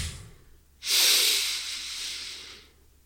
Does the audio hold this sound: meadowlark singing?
no